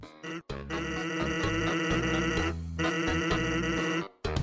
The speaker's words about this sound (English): a box appears and their dialogue types out. But the typeface and the pitch of their voices have a surprising amount of personality